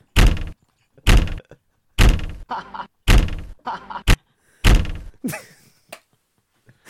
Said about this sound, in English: Stop slamming the goddamn door.